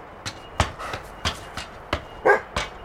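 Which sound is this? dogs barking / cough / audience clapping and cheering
dogs barking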